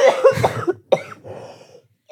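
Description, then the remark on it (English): Several close, harsh coughs in quick succession, loud and near the mic, followed by a softer throaty rasp as the coughing trails off. No speech. “We're gonna edit all these coughs out, right?”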